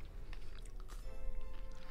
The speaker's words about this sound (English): Oh, I got something crunchy in there, and I wasn't expecting it because I didn't have any M&Ms. Oh, that's the M&M.